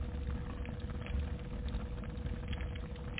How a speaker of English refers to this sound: And we've got a crackling Christmas fire.